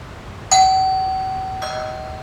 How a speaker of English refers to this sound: Doorbell.